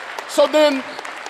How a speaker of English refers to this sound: Come on, give the Lord a hand clap right now.